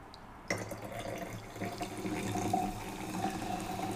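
Liquid pours steadily into a cup, starting abruptly after a brief quiet moment and continuing as a constant splashing stream with no one talking.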